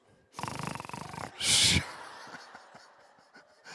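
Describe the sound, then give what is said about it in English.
A person demonstrates exaggerated heavy breathing as a breathing exercise: a long, rasping, fluttering inhale, then a short, loud, forceful huff of exhaled air, followed by quiet. “But it's the breathing exercises that are so important.”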